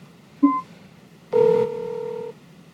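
A brief electronic beep, then after a pause a longer steady phone tone lasting about a second, like a call being placed and starting to ring. Clean and fairly close, with no voices.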